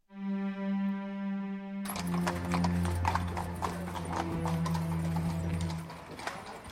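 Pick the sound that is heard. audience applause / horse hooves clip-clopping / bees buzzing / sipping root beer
horse hooves clip-clopping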